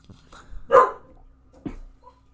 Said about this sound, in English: Oh, now my dog's mad. My cur. Arr.